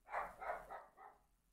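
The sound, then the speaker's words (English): A dog barks four times in quick succession, each bark a little softer than the last, with no one talking. “When he barks, it makes my dog go crazy.”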